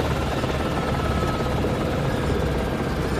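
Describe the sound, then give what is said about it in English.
A helicopter carrying takahē birds in travel boxes lands at Tor's Ridge, just over the lake from Te Anau. Its steady, dense rotor and engine noise fills the whole clip at a constant loud level, with a faint tonal whine running underneath. “As the chopper lands, we can hear the birds in their travel boxes calling.”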